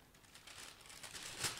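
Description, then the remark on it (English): A hard, unripe avocado is slipped into a new brown paper bag to ripen it (the paper bag method): steady crinkling and rustling of paper, ending in a brief, sharper crackle with a soft bump. No one speaks. “Place it into a brown paper bag.”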